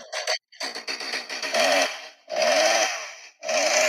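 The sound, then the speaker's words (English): A person's voice imitates a chainsaw, sputtering briefly before several loud revving bursts that rise and drop in pitch, with short pauses between them. “It's like putting a chainsaw”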